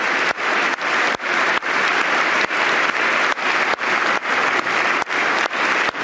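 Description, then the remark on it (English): Loud, steady clapping by Donald Trump picked up right at his microphone as he leads the crowd in clapping, sharp hand claps repeating in an even rhythm about twice a second over a broad wash of crowd applause, with no talking. “That loud clapping is Trump into his mic.”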